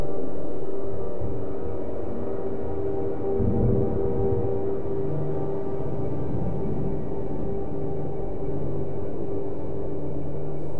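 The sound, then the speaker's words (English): A distant train rumbles past with a steady low drone and sustained tonal hum, a faint horn-like tone holding through the middle, the loudness staying fairly even across the pass. No voices. “The distant, incongruous sound of a train briefly pierces the silence, an anomaly in this otherworldly setting.”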